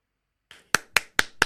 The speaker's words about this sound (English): Yeah, that gets an applause. Yep, I like that. Thank you.